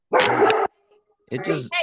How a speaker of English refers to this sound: We can hear him too. Big dog. Yeah, come here, buddy.